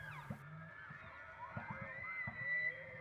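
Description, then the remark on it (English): A bull elk makes low, throaty glugging grunts in short bursts of quick pulses, as bulls do when herding up the cows, over a steady thin whine and rising squeal-like tones, with no talking. “hear that glugging sound?”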